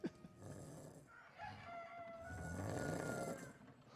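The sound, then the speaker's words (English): A bird calls out with a few warbling, squawky notes over a low, rough background rumble, fairly quiet, with no one speaking. “Only a pretty bird.”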